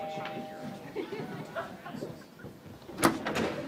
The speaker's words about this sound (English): I'll get the door.